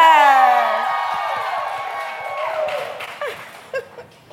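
An audience yells and cheers as the guest Michael B. Jordan is brought out, with loud, high-pitched screams and whoops at the start that gradually fade into a softer crowd roar, then a few scattered shouts near the end.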